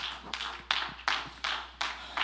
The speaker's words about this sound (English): Let's clap our hands to the Lord.